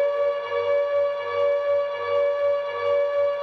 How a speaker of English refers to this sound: It started with a random tweet from the Konami Twitter account sharing this undeniably creepy sound effect. Along with the sound clip, Konami wrote, "Close your eyes. Always scary Silent Hill 2 siren."